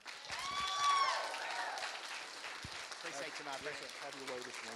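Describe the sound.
An audience at Refuge Church applauds one morning to welcome a guest minister, a steady wash of clapping that swells early and then holds. Scattered voices call out over it, and a clearer voice rises near the end.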